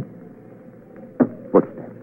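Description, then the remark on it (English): Two heavy footsteps coming into a hall land in quick succession, dull thudding impacts about a third of a second apart, over a low steady background hum with no one speaking. “Footsteps. Footsteps coming into the hall.”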